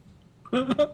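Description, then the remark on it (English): A young girl sings in the background, picked up by a microphone: a brief, high-pitched phrase of two sustained, tuneful notes in quick succession after a moment of quiet, with no other voices. “Is she singing? She's singing.”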